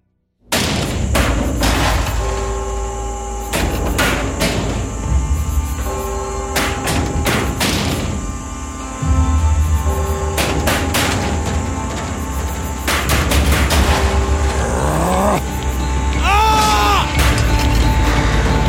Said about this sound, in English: Knocking indeed. If a man were a porter of Hell Gate, he should have plenty of key turning to do here. Knock, knock, knock. Who in the name of Beelzebub is there?